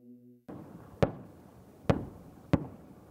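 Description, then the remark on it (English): Three sharp, booming explosions go off about a second apart over a steady rumbling background as bombs dropped from a drone by a Ukrainian unit hit a Russian main battle tank, each a sudden crack that fades quickly. A brief humming tone comes just before the first blast. “His unit also managing to take out a Russian main battle tank by dropping several bombs on it.”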